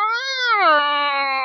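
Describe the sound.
A person imitates a strange, drawn-out cat moan, a single nasal wavering tone that rises slightly, then sinks and holds low, fairly loud with no other sounds around it.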